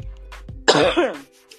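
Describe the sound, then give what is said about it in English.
A single harsh cough bursts out loudly, a rough throaty blast lasting about half a second, with quiet breathing before it and nothing after. “Hold on, I'm about to cough.”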